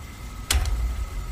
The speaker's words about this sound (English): What was that? Was that the door closing? It was. It's a latch hitting its keep. There's always a click.